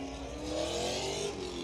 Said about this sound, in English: That Corvette's fucking loud. Very loud Corvette.